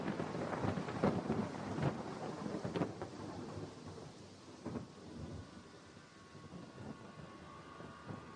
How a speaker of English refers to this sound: Well, the rain was heavy. The rain was very heavy. Heavy rain, but cool rain.